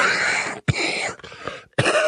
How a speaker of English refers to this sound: I'm going to cough.